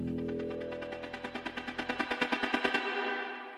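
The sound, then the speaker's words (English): A rapid, steady volley of sharp pops from fireworks launching and bursting, about twenty in quick succession, building slightly in loudness over a low rumble before cutting off abruptly. “In 2010 in the Philippines, it took just 17 seconds to launch nearly 126,000 rockets.”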